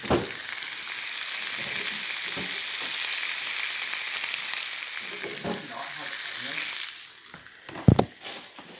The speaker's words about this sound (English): What kind of fucking glizzies are you making, boy? Well, I was just gonna fry up some onions for them. Like, for whoever wants them. I like some ASMR.